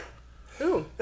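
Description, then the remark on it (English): A single short, sharp sneeze bursts out after a moment of quiet, with a brief voiced edge and another sound starting right at the end. “Bless you.”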